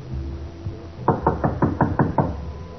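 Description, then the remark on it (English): A series of seven quick, evenly spaced knocks on a wooden door, fairly loud, over a low background hum, with no voices. “We're going to knock on the door.”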